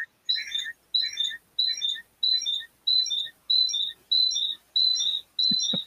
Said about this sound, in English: It's like a bird chirping in the background.